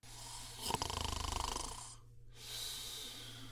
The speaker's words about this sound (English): You get to spend your Tuesday night just a sitting and a snoring as you're crashed out in the rocking chair.